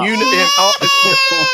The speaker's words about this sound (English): Will somebody please water torture that baby? I agree. The baby needs a bottle.